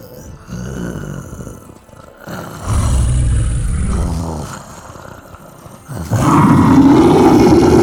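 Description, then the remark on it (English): A deep, growling monster roar from Granny Goldie, who has turned into a monster, rumbles in waves, swelling louder in bursts and ending with a harsh, sustained bellow. No speech, just the snarling roar. “We let out a monster!”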